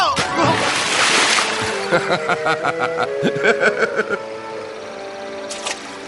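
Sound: splashing water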